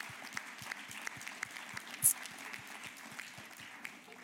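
A conference audience claps steadily in a dense, even round of applause, many overlapping hand claps forming a continuous patter with one slightly sharper clap partway through.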